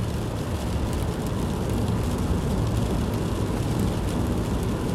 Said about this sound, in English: Here I am anyways, in my car, in the rain.